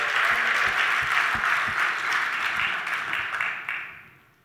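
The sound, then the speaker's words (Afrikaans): A crowd applauds for the band with dense, steady clapping that holds for several seconds, then thins out and fades away at the end. “Kom ons gee net 'n bietjie klap vir die hande, klap vir die band.”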